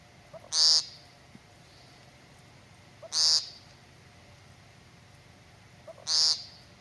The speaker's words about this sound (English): Well, congratulations to Joey P., Ozzy, and Trish H., who all correctly guessed it was the sound of the American woodcock. So the American woodcock, aka the timber doodle, is a small bird found in North America.